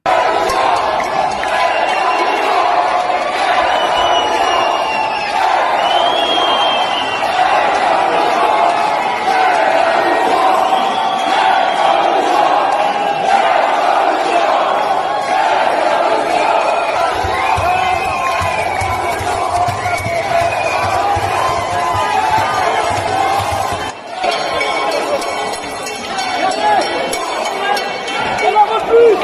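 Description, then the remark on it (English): A large crowd of French people shouts and chants continuously while entering the Potier Town Hall, a dense roar of many overlapping voices at steady high volume, with occasional clinks and a brief dip near the end before the noise swells again. “That was the French entering the actual, the Potier Town Hall.”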